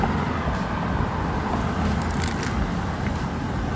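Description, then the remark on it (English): Steady road traffic rumbles continuously during a walk, a broad low roar of passing cars and heavier vehicles with faint higher hiss, no voices, recorded outdoors at moderate loudness. “You hear all sorts of traffic.”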